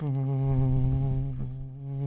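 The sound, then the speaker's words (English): A steady, voiced buzz made with the lips, a bilabial lateral fricative: the lips are closed and only their sides open so air buzzes out on either side. It holds one low pitch with rich overtones for about two seconds and sounds like an insect hum, with no talking over it. “That's what you could call a bilabial lateral fricative.”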